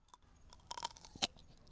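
A close, crisp crunch of biting into a pickle spear: a cluster of wet crackling snaps followed by one sharper bite, then quiet chewing, with no talking.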